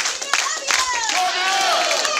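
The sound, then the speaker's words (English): A group of Walmart store employees in downtown Los Angeles chant and shout together in a loud, energetic company cheer, several voices overlapping, with a few scattered claps mixed in throughout the short burst. “Downtown Los Angeles Walmart cheer.”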